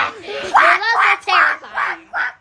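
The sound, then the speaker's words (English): A child's voice imitates ducks quacking, with about five loud, nasal honks in quick, uneven succession. “This is an actual representation of what they were doing.”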